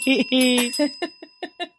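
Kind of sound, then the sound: signal or alarm, bell ringing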